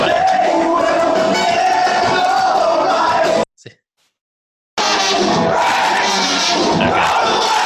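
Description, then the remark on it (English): A loud concert crowd sings along in a dense, roaring mass of voices, cut off by a brief silence before the singing crowd swells back in at full volume. “I mean, maybe they're just kind of leaving it up to the crowd to carry that part, which makes sense.”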